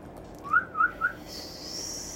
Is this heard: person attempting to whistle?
yes